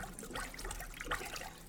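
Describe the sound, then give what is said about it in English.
Water splashing and churning in a steady, busy wash of droplets with a few brighter splashes, fairly quiet and continuous, with no voices. “Stop splashing me”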